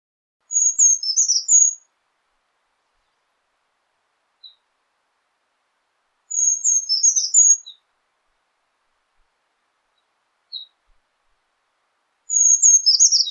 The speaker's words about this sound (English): it's often a song that we tuck into the back of our mind because it blends in with the surrounding environment so well, and also is not super in-your-face like a lot of other birds can be. Let's take a listen to what the brown creeper sounds like.